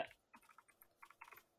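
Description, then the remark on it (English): Rapid keystrokes clatter on a computer keyboard, a quick uneven run of about a dozen soft clicks, with no voices. “excuse me, everyone, for typing, because the I'm just grabbing.”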